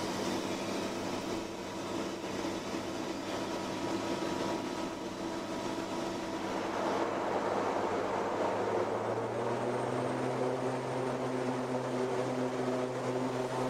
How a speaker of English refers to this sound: There you go. There is one loop around the pattern, single engine, in a DC-3.